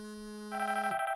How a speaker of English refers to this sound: His phone rings.